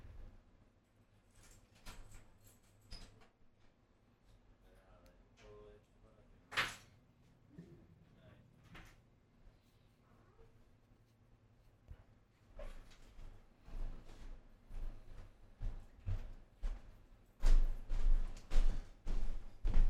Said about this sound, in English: Hey, dude, give me, I gotta open the door for my girl. I'm an idiot. I left the fucking keys in the inside.